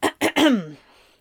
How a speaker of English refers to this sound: coughed for a moment before recovering.